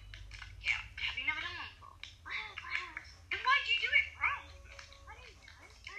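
A duck quacks over and over in irregular bursts of nasal, raspy calls, moderately loud, with a low steady rumble underneath.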